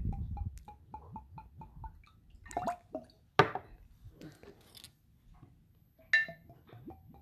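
Evan Williams Bottled-in-Bond bourbon glugs rhythmically from a bottle into a glass as small tasting pours are made, a quick run of hollow, bubbly gulps, with a few sharp clinks of glass on glass between pours. Fairly quiet, no talking.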